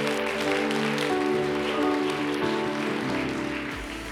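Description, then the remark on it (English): A crowd claps steadily throughout, a dense, even patter of many hands under sustained music with held tones. It stays at a constant, fairly loud level for the whole stretch. “Can you lift your voice and clap your hands and claim, I'm a winner, we're a winner.”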